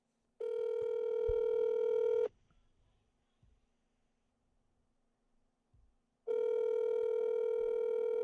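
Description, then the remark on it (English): Two long, steady telephone ringing tones, each lasting about two seconds, separated by a pause of roughly four seconds, heard clearly down a phone line with faint low background noise in between, as a call is placed to a friend. “Let's make a phone call. Let's phone a friend.”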